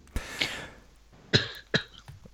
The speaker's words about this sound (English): Was that a stifled laugh? No, that was a cough. Sorry, that's my bad.